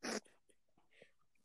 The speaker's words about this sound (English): I gotta cough and sneeze at the same time. Me too. That one hurt.